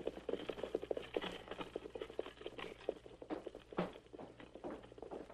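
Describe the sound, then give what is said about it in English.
Horses' hooves clip-clop in a quick, steady rhythm, several horses moving together as a wagon departs, over a low rumbling background, fairly quiet and continuous, with no voices. “take off that brake and start heading for the hills. Get up, horses. I'll be right behind you.”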